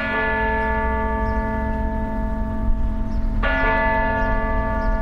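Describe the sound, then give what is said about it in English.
Church bells ring out at May Day festivities in Oslo, Norway, with a rich, sustained, overlapping hum of tones, a fresh strike landing partway through and swelling the chime again. Loud and continuous, with no voices. “We leave you this week ringing in the month of May.”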